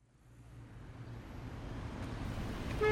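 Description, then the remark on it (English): Low, rumbling engine noise of vehicles sitting in traffic, a steady idling hum that swells gradually louder over a few seconds, with no voices. “This traffic is not moving, and I'm stuck.”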